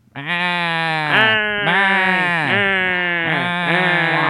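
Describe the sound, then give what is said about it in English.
A person's voice does an impression of Gilbert Gottfried mixed with a bleating sheep, loud, with a nasal, strained tone that wavers and dips in pitch several times over about four seconds without pause. “It's Gilbert Gottfried and a sheep mixed together.”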